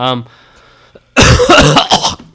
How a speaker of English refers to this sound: Learn how to breathe, you idiot. You just cough right into the microphone, huh?